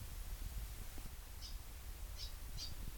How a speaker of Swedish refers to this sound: Vi hör fåglarnas kvitter. Vi kan också se Torrlösas kyrka, siluetten av den genom bladverket framför oss.